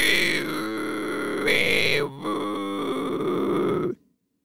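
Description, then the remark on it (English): A person imitates a Tasmanian devil by breathing in air and squeezing the throat to make a reverse whistle: a harsh, rasping inhaled growl, a loud, continuous strained screech with wavering pitch and brief dips, lasting about four seconds before cutting off to silence. “So do you know how I'm making that sound for the Tasmanian devil? I'm breathing in air and kind of squeezing my throat together to make it kind of do a reverse whistle.”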